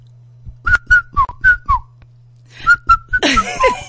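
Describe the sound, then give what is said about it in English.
10-year-old boys whistle a short song tune, five quick notes at shifting pitches, pause briefly, then whistle a few more notes that end in a burst of breathy, noisy sound. “The other day I was walking and these 10-year-old boys were being just naughty and they started whistling.”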